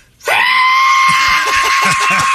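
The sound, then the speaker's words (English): A voice mimics a shrill screeching whistle, holding one loud, piercing, steady note for about two seconds after a brief silence, with faint low murmuring beneath it toward the end. “Saw that between a screech and a whistle.”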